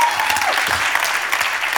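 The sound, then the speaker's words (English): An audience claps steadily, a dense spread of many hands applauding together, filling the space with continuous, fairly loud clapping. “Come on, if you're going to clap, do that well.”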